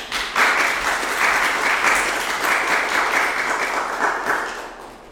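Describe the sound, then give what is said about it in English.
A crowd applauds an assistant before a reading, steadily for about five seconds, a dense wash of many hands clapping that swells quickly and tapers off at the end, with no voices. “Can we give my most beautiful assistant a round of applause?”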